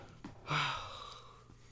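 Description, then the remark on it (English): A drawn-out yawn: a sudden breathy intake with a brief low voiced groan, then a long airy exhale that slowly fades over about a second, with no talking. “I yawned. I'm sorry.”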